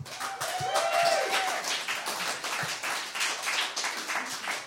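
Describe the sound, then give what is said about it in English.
A crowd claps steadily, a dense crackle of many hands that holds for the whole stretch, with a brief whistle rising and falling near the start; audience applause welcoming a performer to the stage for the show What About the Men? Mansplaining Masculinity. “Yeah, I mean, I don't know if I need a round of applause or whatever, but I mean, welcome to the stage”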